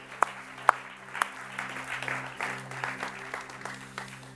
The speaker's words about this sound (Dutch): Can we all give the band a hand, please, guys? Laten we de band een applaus geven.